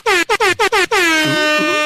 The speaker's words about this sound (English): You get the air horn when you do a year sub. Yeah. You know? Yeah. We're going to call it the year horn.